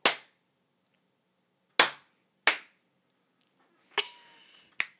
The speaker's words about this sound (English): All right. We're going to clap again.